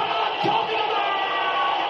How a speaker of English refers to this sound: Every near miss, every mark, every tackle, every point scored and every goal brought about a thrill. And it was echoed by the roar of the crowd.